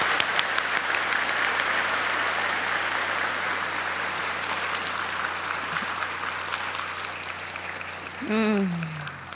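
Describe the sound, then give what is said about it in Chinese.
A large audience claps steadily for several seconds to welcome the Master to give a teaching, a dense, even wash of applause that eases slightly, with a brief rising whine cutting in near the end. “好，现在大家以最热烈的掌声恭请师父开示。”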